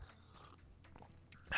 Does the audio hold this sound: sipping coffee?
yes